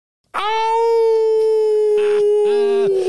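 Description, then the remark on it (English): A person's voice imitates a howl, holding one long, loud, steady-pitched wail for about two and a half seconds before cutting off abruptly, with no talking around it. “Are you going to howl,”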